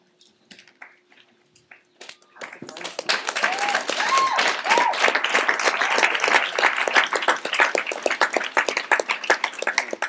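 An audience breaks into applause after a couple of quiet seconds, a dense, steady patter of many hands clapping that stays loud through to the end, with a few whoops rising above it.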